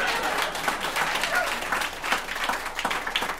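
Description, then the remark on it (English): An audience claps steadily for a few seconds in answer to a quick survey question, a dense wash of overlapping hand claps at moderate loudness with no talking over it. “All right, just by applause, how many people have been able to avoid the biscuit mix in the kitchen?”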